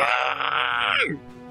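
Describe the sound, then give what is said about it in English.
A voice imitates a giant worm, Worm Mick, screeching at an orange-robed figure as if attempting to communicate: one loud, strained, high-pitched wail held for about a second, then sliding sharply down into a low groan before fading. “Worm Mick just kind of, like, screeches at the, like, orange figure, like, attempting to communicate, like, what do you want, but it's mostly just...”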